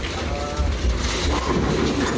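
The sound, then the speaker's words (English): A bowling alley pinsetter machine, seen behind the scenes, runs as it sets pins: a steady, loud mechanical rumble and clatter with a faint whine early on, filling the whole stretch without pause. “This machine goes through a lot of work just to set pins.”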